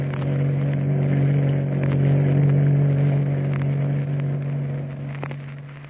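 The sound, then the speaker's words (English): A ship's launch, the Spray Hound, roars steadily through the night off the coast of Chile, pursuing another small craft, its engine holding a deep, constant drone with a rushing wash of water and spray over it for several seconds, no voices. “Tex and Kukai in the ship's launch, the Spray Hound, roaring through the night off the coast of Chile, pursuing another small craft”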